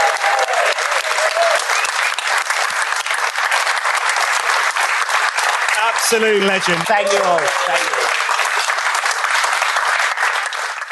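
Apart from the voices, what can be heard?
audience round of applause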